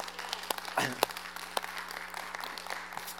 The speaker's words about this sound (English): So we're a unit here. One of us claps, all of us claps. All right? We got to do that.